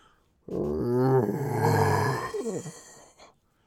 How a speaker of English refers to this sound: You can't quite tell what's going on, but you hear a horrifying howl in the darkness.